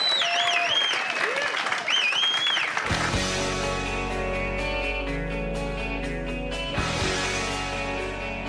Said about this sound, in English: What about a round of applause for these guys?